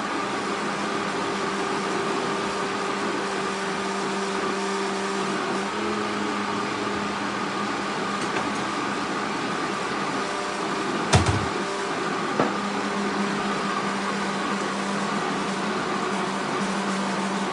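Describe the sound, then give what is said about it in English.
A blender runs on high speed, a steady, fairly loud motor whir with a constant hum throughout, broken only by a couple of brief clicks near the end. “I usually turn on the high. I leave it running for like 30 seconds, something like that.”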